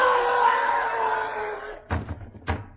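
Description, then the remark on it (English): A long, fading cry is followed by two heavy thuds, like a body falling against a front door, the impacts dull and booming with a short gap between them. “Sounded like someone falling against the front door.”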